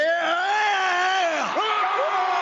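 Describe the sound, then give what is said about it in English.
Loud, sustained yelling from several male voices, one long drawn-out shout with sliding pitch, continuous for a couple of seconds, with no clear words. “Guys, please, when you yell like that, no one can hear me.”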